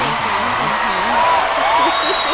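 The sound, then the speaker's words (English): Steady, dense applause sound effect from a crowd fills the whole clip at a loud, even level, with wavering cheers and whoops rising over the clapping. “We hit another applause for you and shit.”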